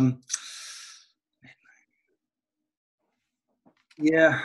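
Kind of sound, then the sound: human body sound, yawning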